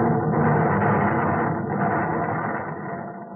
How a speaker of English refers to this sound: Listen to the death rattle of a ship. Hear that? Huh? That's her ammunition exploding.